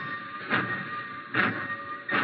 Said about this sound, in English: He watched the black train. He didn't move all the time it was going.